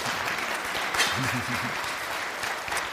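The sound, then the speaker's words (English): An audience applauding during a sermon: steady, dense clapping that fills the whole three seconds at an even, moderately loud level, with a brief voiced cheer rising out of the crowd partway through. “Yes, you may clap during the middle of a sermon.”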